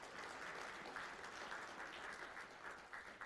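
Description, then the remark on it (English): A crowd applauding steadily, a dense patter of many hands clapping at an even intensity throughout, fairly soft, with no voices. “And you guys did a terrific job, and I think you ought to really be applauded for the great job that you did.”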